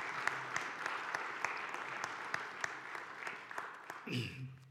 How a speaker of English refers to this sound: So could we just give God a big hand of applause?